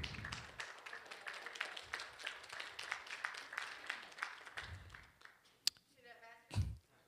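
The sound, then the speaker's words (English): A church audience applauds for about five seconds at a morning service as a woman is called up to share her dream and testimony, a dense wash of clapping that fades out, followed by a brief voice calling out near the end. “Y'all give her a round of applause this morning.”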